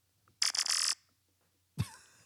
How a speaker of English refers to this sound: Got our buzzers up. This is my sound whenever I buzz in today.